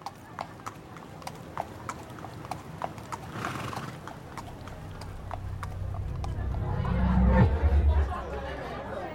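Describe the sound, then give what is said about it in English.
Steady, even clip-clop of horse hooves at a relaxed walking pace during a horse ride, with a horse whinnying near the end and faint voices chattering in the background. “I've never ridden a horse before.”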